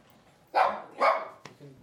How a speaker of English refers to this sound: Those are dogs, by the way. We're under attack. The front door. That's probably male.